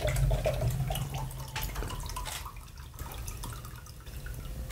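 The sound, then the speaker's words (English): Coconut water pours steadily out of an opened coconut into a cup, a continuous trickling splash with small drips, moderately loud, with no talking. “So after that, you can just take it out like that and just grab like a cup or like a straw. And just pour the out.”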